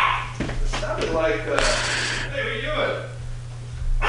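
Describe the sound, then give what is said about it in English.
A small female dog barks sharply in a few quick bursts at somebody outside, over a steady low electrical hum with some muffled voices in the background. “No wonder she's barking, man.”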